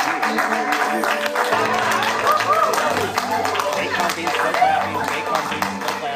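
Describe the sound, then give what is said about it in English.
An audience claps steadily for about six seconds after hearing their company was bought by Oracle Corporation, a dense patter of many hands, with murmuring voices and cheers mixed in throughout. “clapping's over, right?”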